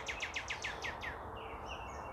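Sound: loud bird calling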